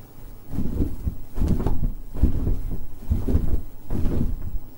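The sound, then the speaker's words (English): A huge, heavy blanket shaken at home in repeated bursts as an ocean sound effect makes low, rumbling whooshes and flaps, like wind hitting large sails, with about five surges over several seconds and no talking. “For example, I have this huge blanket that can create a really cool sound effect for wind hitting the large sails.”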